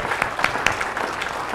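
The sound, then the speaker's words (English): A crowd of people applauding, dense overlapping claps with a few sharper standout hits, steady and moderately loud throughout with no voices on top. “Come on, give them a clap off in the praise from him.”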